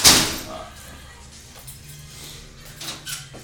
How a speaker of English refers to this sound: Oh, shut the door.